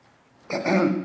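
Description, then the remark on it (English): A single throat-clearing cough, a short raspy burst after a moment of near silence, loud and harsh with a rough, gravelly texture. “You also have to excuse me. If I cough, I have this weird thing that happens to me.”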